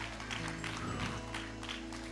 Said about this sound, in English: Give him a praise clap this morning. Come on, can we give him one clap? Jesus.